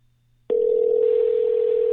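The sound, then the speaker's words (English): A steady telephone dial tone switches on abruptly after half a second of near silence and holds loud and unbroken, with no voices. “Making phone calls now.”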